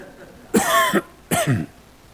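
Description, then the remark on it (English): A man coughs twice, loud, each cough a harsh burst with a short pause between them and quiet before and after. “Turn your hearing aids off when I cough.”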